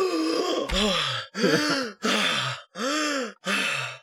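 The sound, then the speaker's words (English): A farmer gasps for air in six loud, breathy heaves after cold water is splashed in his face to wake him, each a strained groaning pull of breath in quick succession, with no words spoken. “She takes the cold water and splashes the farmer in the face, and he just wakes up like somebody coming out of the water, gasping for air.”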